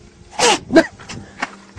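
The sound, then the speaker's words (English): A goat lets out two quick bleats, a loud, wavering nasal cry followed by a shorter one, then a couple of faint, softer sounds trail off. “All right, maybe the goat's not too crazy after all.”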